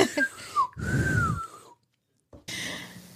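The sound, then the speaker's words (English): A breathy, failed attempt at whistling: a thin, wavering tone barely forms over rushing air, then a brief silence and another airy puff that never becomes a clear whistle. “I can't even whistle.”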